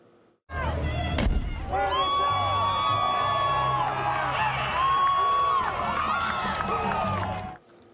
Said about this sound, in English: In Oakland, mobs with helmets and shields attacked a police station. They shot cops with fireworks.